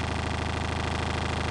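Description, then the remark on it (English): A dry, unfiltered synthesizer oscillator signal from a 4MS Ensemble Oscillator: a steady, buzzy low rumble and a fast pulsing flutter, much like a running truck engine, holding at an even loudness throughout with no voices. “I think it sounds kind of like a running truck or something.”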